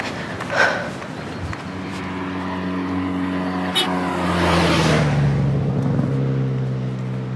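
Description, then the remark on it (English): Car engines drone steadily as vehicles pass along a stretch of highway that wraps around Table Mountain, one rising and then falling in pitch as it goes by, with a brief sharp noise partway through and faint footsteps of someone walking along the highway underneath. “so I had to walk along a stretch of highway that wraps around Table Mountain.”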